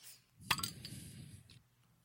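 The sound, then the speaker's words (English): Drinking glasses clink together in a toast: one sharp, bright clink that rings briefly, followed by a couple of lighter taps over a low background rumble. “Damn, you almost broke that sumbitch.”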